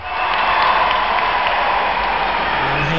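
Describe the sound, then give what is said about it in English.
Loud, dense applause with crowd cheering, a steady wash of clapping that sustains evenly from start to finish with no talking over it. “Hand clap for my guy”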